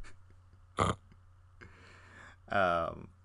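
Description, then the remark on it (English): A dog snoring: a short, sharp snort, then a softer raspy breath, followed by a loud, throaty, grunting snore with a buzzing, pig-like tone. “And if you hear a sound right now, that's my beautiful dog snoring right now.”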